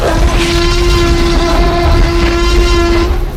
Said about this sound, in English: Okay, that roar nearly blew my cape right off! She's amazing!